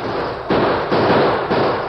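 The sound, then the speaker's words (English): A volley of loud gunshots, roughly three sharp reports spaced about half a second apart, each trailing into dense, crackling noise with no voices. “you won't be around to hear the shooting”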